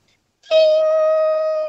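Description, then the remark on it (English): A caller from Canberra, asked to do a doorbell for the show, imitates a doorbell by singing one loud, steady sustained note for just over a second, with no other sounds around it. “In 3, 2, 1, I need you to give us your doorbell, okay?”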